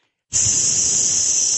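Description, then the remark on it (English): A sizzle sound effect bursts in abruptly after a brief silence, then holds as a steady, loud, bright hiss with a faint low crackle underneath, continuing unchanged to the end. No one speaks. “Was that a sizzle? That was a sizzle?”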